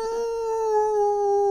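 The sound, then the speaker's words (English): A person imitates a wolf howl as the animal noise for the game In the Wild with Kim Wilde, with a single sustained, steady vocal tone held for over a second, loud, with no other speech. “Well, you have to make the noise of an animal. Yep. Say, like, if it's a wolf, I'll shout this at a wolf.”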